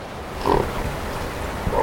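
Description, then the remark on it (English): Harbor seals hauled out to rest on shoreline rocks during a strong ebb tide snort twice, short rough nasal bursts spaced over a second apart, set against a steady wash of background noise with no voices. “If we're lucky today, we'll hear some snorting.”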